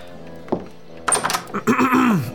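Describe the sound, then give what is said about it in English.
A door is opened: a soft knock, then a clunk of the latch and rattling, followed by a drawn-out hinge creak that slides downward in pitch. “Look, just open the door and encourage it to leave.”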